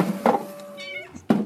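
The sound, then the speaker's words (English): A cat in a cat cafe gives a single drawn-out meow at moderate volume, framed by a couple of short dull thuds and faint background murmur, with no clear speech. “What, the cat cafe? I've been coming here for years.”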